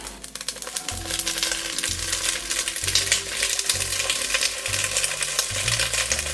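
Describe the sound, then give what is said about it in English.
Steady, dense sizzling and crackling of garlic and lemon zest frying in hot oil in a pot, fairly loud, with a low tonal hum shifting underneath and no one speaking. “Okay, garlic is sizzling, lemon zest is sizzling, the beans are ready to go into the pot.”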